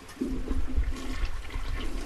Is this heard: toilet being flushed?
yes